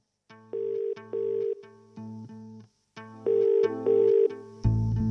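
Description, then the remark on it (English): A phone rings on an outgoing call: a clear electronic ringback melody in short paired bursts, repeating twice, moderately loud, with no one talking. “I had to make a phone call.”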